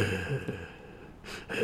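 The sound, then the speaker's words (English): A voice imitates heavy breathing at a pizza shop window, with a couple of loud, breathy huffs in quick succession, the strongest one near the end. “I'm sitting there heavy breathing.”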